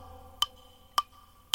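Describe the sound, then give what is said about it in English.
Three crisp, evenly spaced ticks of a wall clock about half a second apart, sharp and metallic against a faint steady hum, with no voices. “And there was no sound at all, but the clock upon the wall.”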